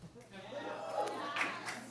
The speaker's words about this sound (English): Don't cheer for that. It's not 2001 anymore. Get out of here.